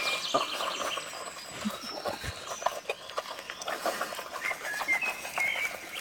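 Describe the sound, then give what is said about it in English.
Mini pigs eating, with a steady stream of wet, crunchy chomping and smacking sounds and a few faint snuffles, continuous throughout with no talking. “Mini pigs eating.”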